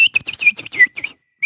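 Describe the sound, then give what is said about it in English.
A person whistles an imitation of the call of a bird often heard outside: a quick run of short, breathy, chirping notes, a brief pause, then one more rising whistle. “This is a bird. I don't know what kind of bird this is, but I always hear it outside. It whistles like”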